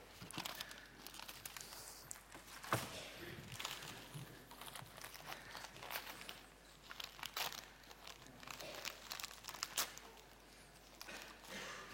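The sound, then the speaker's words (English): Paper crinkling and rustling steadily for several seconds as a gift wrapped in Marks and Spencer wrapping paper is opened, with a few sharper tearing rips along the way. “It's Marks and Spencer's paper, this. It's really good quality.”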